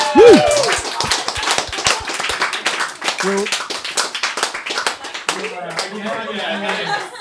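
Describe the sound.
A burst of audience applause for a prize, dense rapid clapping that carries steadily for several seconds, with voices calling out and chattering underneath.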